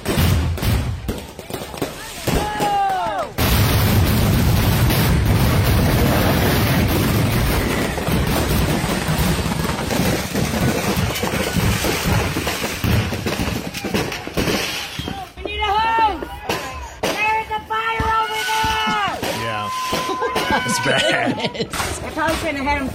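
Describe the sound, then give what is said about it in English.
Fireworks burst nonstop, shooting toward people on a porch, a loud, dense barrage of cracks and booms with hardly a pause, while voices shout and cry out over the din in the later part. “and all of a sudden they start hearing the fireworks and they look over and then the fireworks start shooting at them.”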